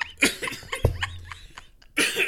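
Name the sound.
coughing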